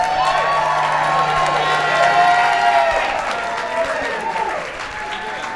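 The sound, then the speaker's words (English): A crowd claps and cheers steadily for Kumail Nanjiani for several seconds, a dense wash of applause with scattered whoops and shouts riding on top, staying loud before easing slightly toward the end. “Please keep on clapping for Kumail Nanjiani.”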